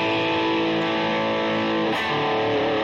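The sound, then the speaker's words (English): A sustained, heavily overdriven electric guitar chord played with slight distortion and a 5150 overdrive, no fuzz, rings out loud, thick with distortion and buzzing harmonics, with a brief shift in the texture near the end. “Just a slight distortion. Although I do a 5150 overdrive here.”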